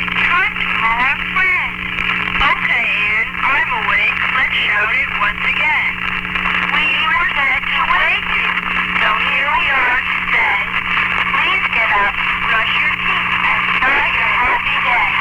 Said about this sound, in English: And let's hear your obnoxious alarm clock.